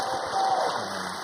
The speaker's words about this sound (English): Give Jesus a hand clap as your pastor comes.